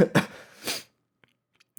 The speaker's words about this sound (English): Yeah, so maybe that's why I'm coughing.